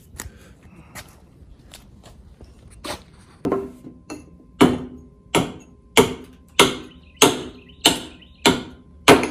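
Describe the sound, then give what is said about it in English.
Rhythmic sanding strokes rasp against a wooden hoe handle being sanded and tapered to fit into the fork, sparse and uneven at first, then settling into a steady back-and-forth of about ten firm scrapes with no talking. “Need a little sanding and taper it so it'll fit into the fork.”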